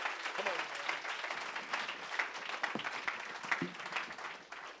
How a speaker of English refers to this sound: clap your hands real loud to the Lord.